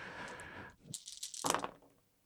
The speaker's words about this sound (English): Good boy is rolling six dice, and good boy is going to rouse. Good boy gets that bonus die.